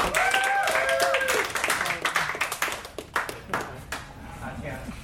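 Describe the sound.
An audience applauds as the next performer is called up for round two. The clapping is dense and crackling, with a few cheering voices at the start, then it thins into scattered claps and fades over about five seconds.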